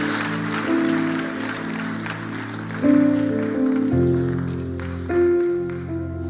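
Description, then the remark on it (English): Steady, sustained applause from a crowd that is asked to stand for a speaker, with sustained keyboard or organ chords playing underneath that shift every second or two. “Let's give Eli a round of applause and let's all stand.”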